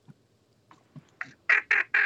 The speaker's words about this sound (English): Must be a buffle head or a ringneck. Oh, it's a bluebill. Yep.